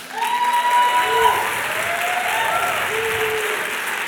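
An audience breaks into loud, sustained applause, a dense steady clatter of many hands lasting the whole stretch, with a few scattered voices calling out above it.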